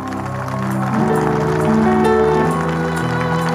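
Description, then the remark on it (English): An audience claps steadily together, a dense crackling patter running under loud, sustained music chords that shift in pitch partway through; no one speaks. “Believe that you've received. That's why you're clapping. Clap louder.”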